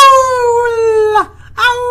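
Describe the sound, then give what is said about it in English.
A person imitates a wolf howl as a sound effect while talking about the movie Crying Wolf, with a loud, sustained tonal wail that slides downward, breaks off briefly, then rises again into a second howl. “I love to do my wolf sound effects.”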